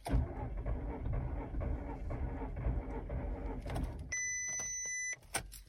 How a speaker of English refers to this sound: But on Sunday morning, the car did not start. Have a listen to this.